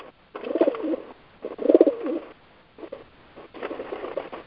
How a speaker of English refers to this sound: it sounds like you gave the phone to the pigeons. They're louder than you are. I joined all my bird friends on the porch.